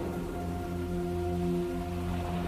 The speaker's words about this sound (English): By the bay. Ignore the foghorns. It's a sunny day. There is no fog today.